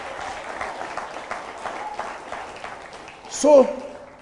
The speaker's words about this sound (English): Oh, if you are clapping, clap better for the Lord.